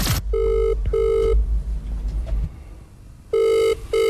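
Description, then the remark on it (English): A phone ringback tone on an outgoing call to Dr. Chris Brown: two pairs of steady tonal rings separated by a long pause, clear and fairly loud, with faint background rumble and no talking. “Sonia ringing Dr.”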